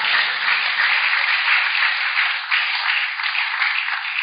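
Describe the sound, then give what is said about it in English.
A crowd claps their hands for the Lord in a steady, dense wash of applause that carries on without pause for a few seconds, fairly loud and even throughout. “It's a good place for you to clap your hands for the Lord.”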